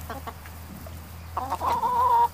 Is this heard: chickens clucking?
yes